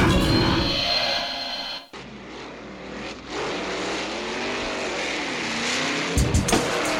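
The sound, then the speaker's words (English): A fast car's engine roars and revs loudly, its pitch climbing and dipping as it speeds past, with a brief drop partway through and a few sharp bursts near the end. “Ooh, that's a fast car, huh?”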